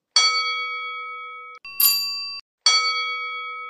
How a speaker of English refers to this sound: Now that is another bell, but it's different because it is a bigger bell than the bell you just heard. Shall we play them together?